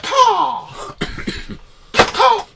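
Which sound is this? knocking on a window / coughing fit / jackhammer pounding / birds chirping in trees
coughing fit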